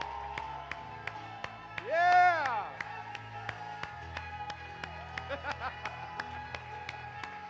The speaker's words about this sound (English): Clap your hands, all you people. Shout unto God with a voice of triumph.